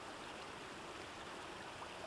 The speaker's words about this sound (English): Rain trickled down leaves, dripping from one to the other, before joining a trickle of water on the ground.